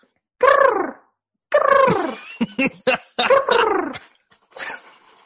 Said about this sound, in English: All right, that was a duck call for those wondering, and we'll is that what a duck call sounds like?